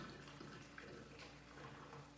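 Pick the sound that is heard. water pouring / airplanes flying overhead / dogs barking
water pouring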